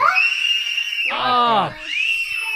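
A toddler screams at a piercing, sustained high pitch, with a wavering, wailing cry bursting out in the middle before the shrill scream resumes; loud, with no talking.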